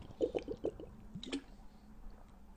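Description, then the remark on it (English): Several quick, wet slurping sips of water in a row, followed by a single swallow, with quiet background noise and no talking. “I'm going to take a sip of water here.”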